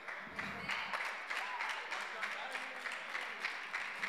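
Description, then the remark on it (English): Audience applause for a man in a church, a steady wash of many hands clapping that lasts the whole stretch, even, with faint crowd voices mixed in. “Let's give him a round of applause.”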